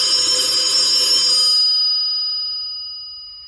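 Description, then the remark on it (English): A telephone in the other room rings with a bright, metallic bell tone, one sustained ring that cuts off and leaves a fading shimmer of overtones. No one speaks. “Oh, there's our phone. That's our important person phone in the other room.”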